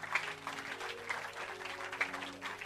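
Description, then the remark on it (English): An audience claps together in a dense, steady patter of many hands, with a few sharper claps standing out, and a faint low hum running underneath. “If you are clapping, clap and clap better.”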